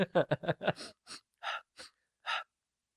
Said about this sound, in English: Finn hides behind the nearest tree, panting but trying to be quiet as he can, as Rey sniffs the air.